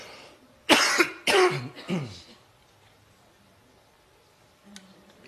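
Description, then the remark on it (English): Three harsh, loud coughs in quick succession, followed by quiet room tone and a faint click near the end. “Sorry, just on these spikes and valleys while I cough like a walrus.”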